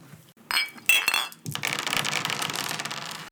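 Glasses of White Russian cocktails clink together in a toast, two bright ringing chinks, followed by a few seconds of steady clattering and rustling. No one speaks.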